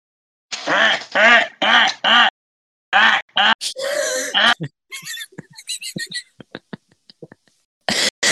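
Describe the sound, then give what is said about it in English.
A person imitates a duck, doing the Pringles duck impression: a run of loud, nasal quacks in quick bursts, followed by scattered clicks and smaller vocal noises, then a few more quacks at the end. “Would anyone like to take a picture of me doing the Pringles duck thing?”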